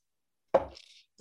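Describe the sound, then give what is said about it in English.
A single sharp clink of glasses touching in a toast, followed by a short high ring that fades within half a second; another tap begins just as it ends. “So cheers to us.”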